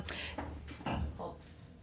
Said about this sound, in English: I was just pouring a glass, excuse me.